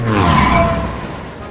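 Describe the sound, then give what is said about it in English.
A loud, roaring burst of pod racer engine noise at the start of a race as the starting light turns green, with whining tones layered over a rough low rumble, holding steady for a moment before easing off slightly. No voices are heard. “Anakin pushed the throttle, and the engines roared in response.”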